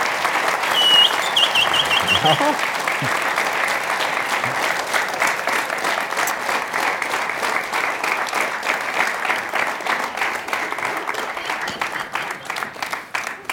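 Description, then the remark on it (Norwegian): Sustained audience applause for a man, a dense steady wash of many hands clapping at full volume for over thirteen seconds, with a few brief whistles early on before it gradually begins to thin. “Gi en stor applaus til mannen”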